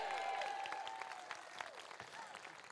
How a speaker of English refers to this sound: Give another big round of applause